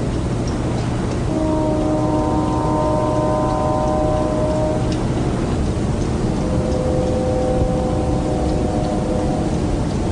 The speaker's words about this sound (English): I hear what sounds awful lot like a train whistle.